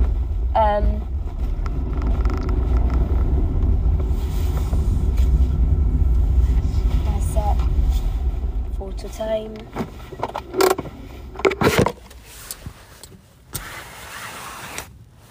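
A car's steady engine and road rumble runs loud, then eases off and quiets as the vehicle slows to a stop at night, followed by a few sharp clicks and knocks inside the car.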